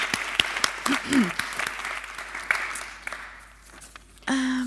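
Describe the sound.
Audience applause: a dense, steady clatter of many hands clapping, fading gradually over several seconds, with a brief voice heard in the middle and a different tonal sound cutting in at the end.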